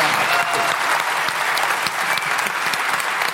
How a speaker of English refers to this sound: So I would have a huge round of applause for some really inspiring and very generous speakers.